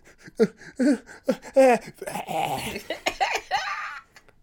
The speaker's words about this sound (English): It looks like a glass of scotch. You think I like scotch? That's why I assume you'd be coughing.